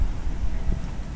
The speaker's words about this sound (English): See what you think of the audio quality. This blustery autumn day in the UK.